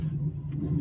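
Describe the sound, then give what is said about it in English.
A riding lawn mower engine drones steadily as people ride around on it cutting grass, a low, constant hum without pauses or changes in pitch throughout the short stretch. “And it's like they're like just riding around and shit. Like, I mean, they're cutting grass, but it's like, goddamn, man.”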